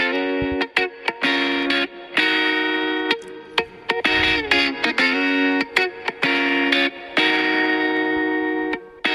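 A snippet of a pop song plays: bright, steady synth-like tones that stop and restart in quick stuttering cuts, heavily processed, with no clear vocals and no one talking over it.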